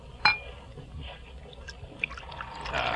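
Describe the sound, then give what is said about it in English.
A sharp glassy clink, then a steady trickling of wine being poured into a glass, growing slightly fuller and louder toward the end, with no talking. “Your glass, Laura? Yes, thank you.”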